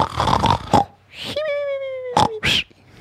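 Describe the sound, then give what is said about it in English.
Someone imitates snoring in a snoring competition: rough, throaty snorts, then a drawn-out whistling wheeze that slowly slides down in pitch, followed by two more short snorting bursts. “We competed there on our snores.”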